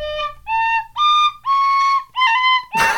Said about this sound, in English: Well done, buddy. That sounded like Back to the Future. I'm pleasantly surprised. Right? Yeah. Okay. Well, that was our first little go of whistleblowers. We need to get you a better instrument, though, because God almighty, tin whistle.